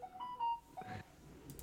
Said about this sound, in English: And I think that notification means it's time to go.